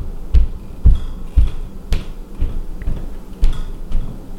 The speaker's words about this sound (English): So I recently moved into a new house, and I have housemates now, and I live on the lower level, which is great. It's lovely. It's a big old house, but often in the mornings, I will hear footsteps above me.